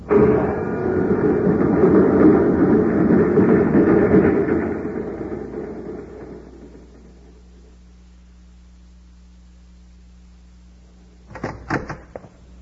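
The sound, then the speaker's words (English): A loud, steady rushing whoosh of a magnetic car with a self-contained power unit zipping down a shaft fades away over several seconds into a low electric hum, ending with a quick burst of metallic clanks. “You can zip down the shaft and come back with food and ray guns.”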